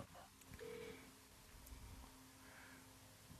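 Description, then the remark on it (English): A phone dials out on speakerphone to call a 16-year-old daughter, with a short electronic beep and a steady thin tone humming underneath, while faint voices and room noise murmur in the background. “call her on the phone and just ask her”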